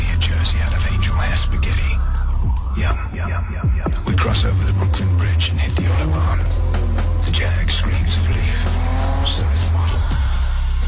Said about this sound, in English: My silver Jaguar XF is puffed out front. I put it in gear and drive, leaving the tall ships in my wake.